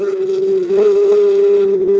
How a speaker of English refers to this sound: It was the fly, buzzing out of sight.